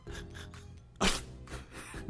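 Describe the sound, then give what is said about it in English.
A voice imitates a sneeze: a few rhythmic, breathy build-up sounds, then one loud, sharp, noisy burst, trailed by softer breaths. “And he sneezes.”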